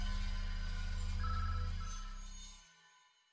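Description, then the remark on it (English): A cheerful mobile phone ringtone plays a bright melodic phrase over a heavy low hum, loud, ringing over and over, then fades out at the end. No one speaks. “I barricaded the front door to the cheerful ringtone as it rang over and over and over.”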